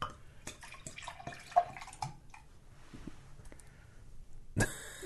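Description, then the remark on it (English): Wasatch beer pours vigorously with a burst of splashing, gurgling liquid that settles into a quieter fizzing trickle, followed by a sharp, loud clunk near the end. “Yeah, we're doing the Wasatch from last time, and I poured it as vigorously as you could hope.”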